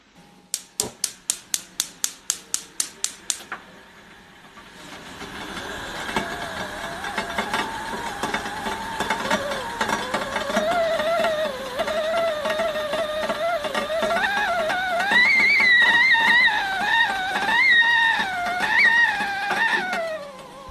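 In a household in Johannesburg, a gas stove igniter clicks about a dozen times in quick succession, then a kettle begins to whistle, its wavering tone rising in pitch and growing steadily louder and shriller.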